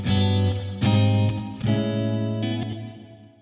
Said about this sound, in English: So I've set a pre-delay on that reverb so that the initial attack is not affected by the reverb. It still is in front, and then it kind of spreads back to the sides.